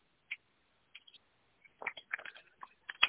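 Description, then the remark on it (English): Wet mouth sounds of someone sipping water: a few soft isolated clicks at first, then a denser cluster of small slurps and swallows toward the end. No talking. “I'm going to get a sip of water.”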